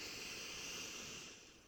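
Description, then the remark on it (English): A soft, steady airy rush of an easy breath drawn in through the nose during a guided relaxation exercise, lasting over a second and tapering off at the end, quiet with no talking. “We're going to take a nice easy breath in through the nose and hold.”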